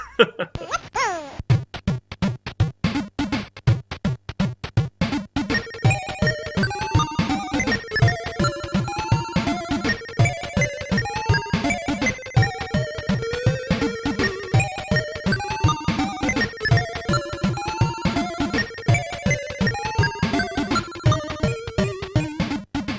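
Bright 8-bit chiptune music from a Sega Master System game: a cheerful square-wave melody with bending, sliding notes over steady bass pulses and rapid arpeggios, played loud with no talking.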